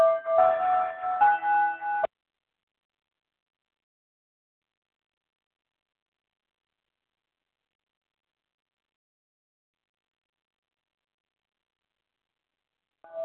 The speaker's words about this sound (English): Sorry, but that was a bell.